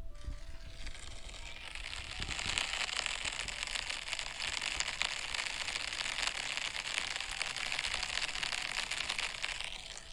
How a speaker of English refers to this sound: This is what the rain sounded like on our walk this morning.